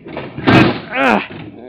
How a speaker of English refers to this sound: This door's smashed. We'll have to pry it open. Maybe if we both pull on it. All right, we'll try.